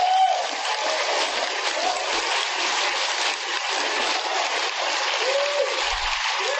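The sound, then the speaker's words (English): An audience applauds steadily, a dense, even wash of many hands clapping that holds at a fairly loud level for the full length without fading or breaking into individual claps. “People don't always clap when you say that.”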